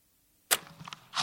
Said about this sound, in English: I just heard Kate's door close down the hall, so I should be in the clear.